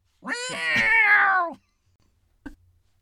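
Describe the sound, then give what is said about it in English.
A person vocally imitates a slayer creature's drawn-out, cat-like screech: one loud yowl lasting over a second that rises and then falls away, followed by silence and a faint brief knock. “I'm making the slayer sound more cat-like than it really is, but...”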